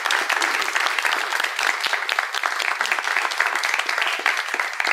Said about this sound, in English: Thank you so much, and let's clap once more for our wonderful storytellers.